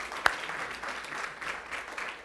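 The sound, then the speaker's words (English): A crowd gives God a round of applause for a young lady who accepted Christ, a steady, dense patter of many hands clapping at moderate volume, with one sharp louder clap standing out near the start. “If you guys just want to give God a round of a hand for that, round of applause.”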